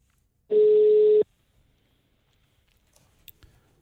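A single steady telephone ringing tone sounds once as an outgoing phone call is placed, loud and lasting under a second, followed by near silence with a few faint clicks and soft handling noises.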